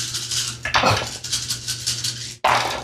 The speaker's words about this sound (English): So Godwin's rolling 18 dice here.